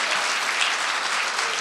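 Steady, dense applause from a church crowd for the Lord, a continuous wash of many hands clapping at even loudness throughout, with no voices standing out.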